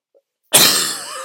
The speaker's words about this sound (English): Excuse me. Nice having this mic. I get to cough right in it. I can oftentimes miss it with this, but bear with me.